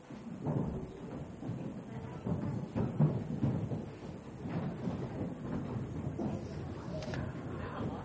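A crowd of children stampedes out of a church service to Sunday school, a steady rumble of many running feet with scattered thumps and faint chatter, filling all eight seconds at a fairly even loudness.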